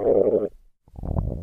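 A loud, close stomach rumble gurgles in two bursts, a low bubbling growl, a brief pause of near silence, then a deeper churning gurgle that rolls on to the end.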